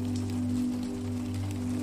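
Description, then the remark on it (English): Soft, steady rainfall with scattered drops pattering throughout, set against a low, sustained hum. No one speaks; the sound stays continuous and fairly quiet. “You listen to the drops of rain as they fall.”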